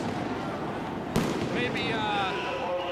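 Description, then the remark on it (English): A single sharp explosion bursts out during a street protest over a steady, noisy crowd-like background, followed by thin whistling tones that linger for the rest of the moment. “Oh, explosions, too.”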